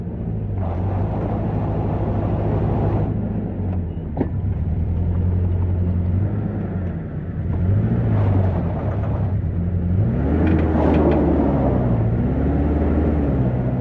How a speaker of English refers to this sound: As I was eating, albeit with a heavy acquiescence, I heard and felt a low rumble of an approaching diesel engine.